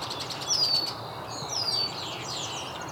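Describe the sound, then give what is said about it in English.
A redstart's thin, high song nearly buried under a busy chorus of calls from many red-winged blackbirds, with overlapping chirps and whistles over a steady outdoor hiss. “Kind of being drowned out by everything else, though. Lots of red-winged blackbirds.”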